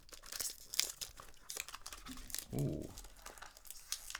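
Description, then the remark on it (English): Cellophane wrapping on a Terre d'Hermes fragrance box crinkles and crackles as it is pulled open, a steady run of sharp, irregular rustling bursts with a few louder tearing crunches, with no voices over it. “I'm just going to let mine die down a little bit while you noisily open your cellophane.”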